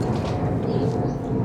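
An airplane passes overhead, a deep, steady roar that fills the low end and holds at an even loudness throughout, with a faint airy hiss above it and no voices.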